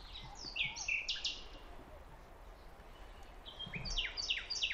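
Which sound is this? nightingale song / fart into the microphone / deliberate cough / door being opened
nightingale song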